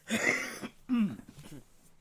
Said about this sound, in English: Sorry, that must be so weird to hear, like, all this random coughing.